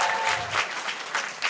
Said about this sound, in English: And keep clapping, because it's a long walk.